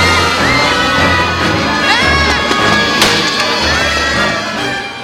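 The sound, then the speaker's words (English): A loud crowd of young girls shrieks and shouts as they rush forward in a chaotic stampede, trampling Bart in The Simpsons, with a thump midway and Bart's high scream cutting through the clamor. “I did like that Bart just gets trampled by all the girls.”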